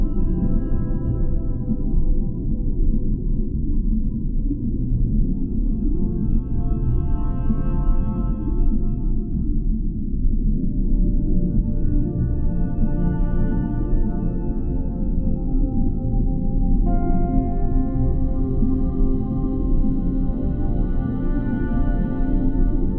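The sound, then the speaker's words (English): Whale song: long, low moaning tones that slowly bend and shift in pitch, sustained continuously over a deep rumbling backdrop, with no voices present. “The magic of the whale infuses your soul and reminds you to dance.”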